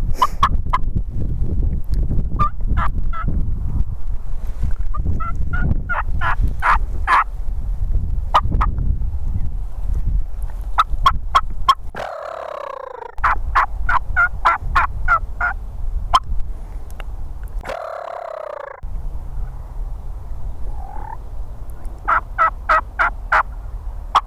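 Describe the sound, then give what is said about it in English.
Turkeys gobble loudly and repeatedly at daylight, their rattling calls bursting out in quick succession over a steady outdoor rumble, with several birds answering one another as they fight their way up into a churchyard. “These birds are gobbling like crazy.”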